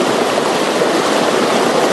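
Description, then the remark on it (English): Rushing water of the swollen Kearns Creek in the small community of Willowbrook roars steadily and loudly, a dense, continuous churning wash with no pauses and no voices. “The tiny community of Willowbrook was already dealing with a swollen Kearns Creek.”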